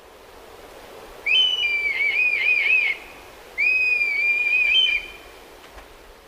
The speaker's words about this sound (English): The red kite sounds almost like a flying cat, emitting a slightly haunting meow call, which becomes very loud when a low-flying group is calling together.